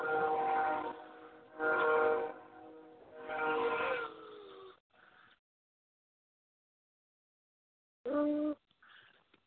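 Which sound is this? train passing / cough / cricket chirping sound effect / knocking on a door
train passing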